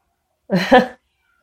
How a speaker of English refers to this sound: He gets in the window and does that meowing when he sees David in the driveway.